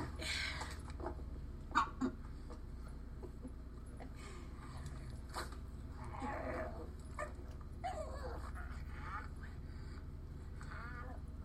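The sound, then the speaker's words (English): A service dog whimpers in a series of short, high whines scattered across several seconds, over a steady low background rumble with a few soft knocks. “You like dogs? Yeah, I love dogs.”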